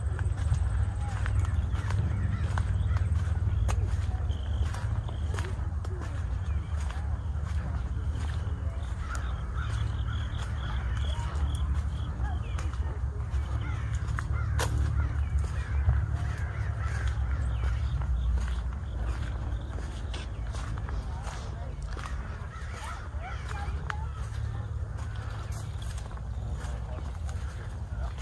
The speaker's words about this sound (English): the sounds, the rustling of the leaves, the crunch of the kernels beneath her feet.